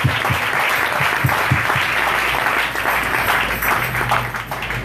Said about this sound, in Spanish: ¡Aleluya! ¡Aleluya! ¡Aleluya! ¡Aleluya! ¡Aleluya! ¡El aplauso!